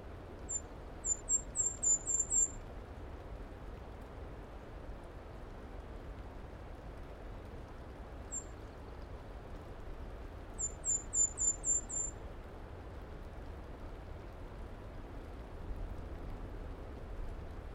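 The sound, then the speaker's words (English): An Audubon's warbler gives two quick runs of high, thin chirps with a lone note between them, carried over a steady rain-like hiss. “A butterbutt. I mean, Audubon's warbler.”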